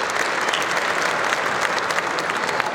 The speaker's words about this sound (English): This whole thing started with 12 people 56 years ago, and we're going to have over 2,000 people in the house today. So give yourselves a round of applause for that.